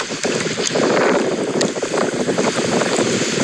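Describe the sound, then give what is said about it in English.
Steady, loud wind rushes across a pond on a windy day, buffeting the microphone with a low rumble while faint lapping and splashing of the water comes through underneath. No one speaks. “It's a windy day on the pond.”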